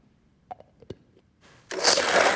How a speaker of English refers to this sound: 1 full cup of orange liqueur. I know it's a lot, but the ice actually kind of dilutes it. Right in the blender. And 1 cup of tequila.